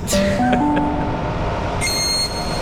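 A train rumbles steadily at a station platform, its motors giving off rising stepped whines, with a thin high-pitched squeal joining near the end. Loud, with no voices.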